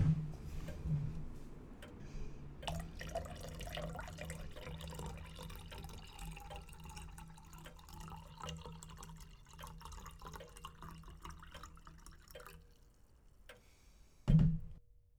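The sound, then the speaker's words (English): Brandy trickles steadily into a glass for about ten seconds, with faint ticking in the background and a brief clink near the end. “Please, make yourself comfortable. Pour yourself some brandy.”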